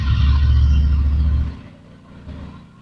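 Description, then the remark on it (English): A car engine rumbles loudly and deeply for about a second and a half, then drops to a lower idle with a brief rev near the end. No voices. “Okay, you probably should go see a mechanic, because I really don't think your car should sound like that.”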